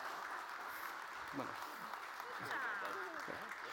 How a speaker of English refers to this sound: Let's applaud all that God has done.